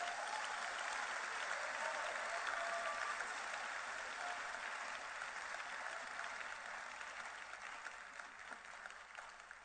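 audience clapping

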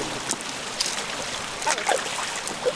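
creek water trickling

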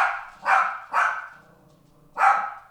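dogs barking

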